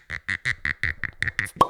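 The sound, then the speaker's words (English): A cork squeaks out of a rye bottle in a quick series of about nine rubbery, high-pitched squeals, ending in a sharp pop with a brief ringing tone. “And I'll pop this bad guy open right now.”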